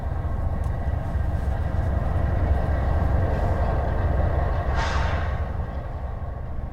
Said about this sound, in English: After another 15 minutes driving, I pull over to the side of the road and listen. A train is moving slowly, with each car stacked neatly with coal.